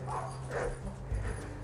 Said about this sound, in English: Well, there's a doggy barking in that house.